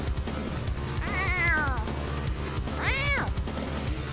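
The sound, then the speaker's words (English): A person lets out two drawn-out, rising-and-falling cat meows, one after another, imitating a cat over a busy, steady background of voices and noise. “It's like dealing with a cat sometimes.”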